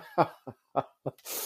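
Someone clears their throat close by in four short, rough bursts, then lets out a breathy exhale, with no talking.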